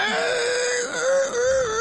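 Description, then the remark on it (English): A band member squeals in imitation of a pig as an interview icebreaker, one sustained high, wavering cry lasting about two seconds, loud and strained with a slight dip midway before rising again. “And we either ask for a pig's call, a pig squeal, or a dinosaur impression. Okay, I'm a squeal.”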